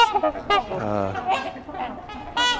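trumpeter swans calling

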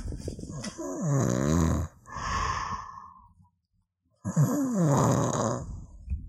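man snoring loudly

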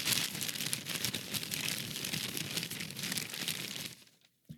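paper crumpling

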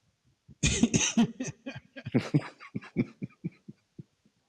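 coughing

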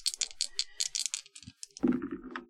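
dice rolling and rattling

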